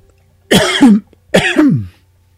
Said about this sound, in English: Excuse me, I'm about to cough.